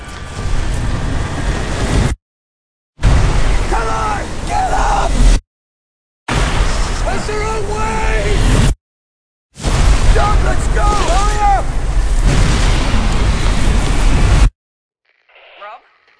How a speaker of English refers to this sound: There is a massive storm headed your way.